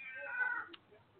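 A single drawn-out cat meow, moderately loud, rising then trailing off over about a second with no talking.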